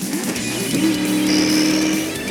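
A race car engine revs loudly and continuously, its droning pitch climbing steadily with a thin high whine riding on top, and no voices.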